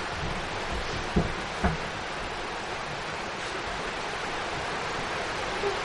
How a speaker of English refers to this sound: It'll get louder because of the rain.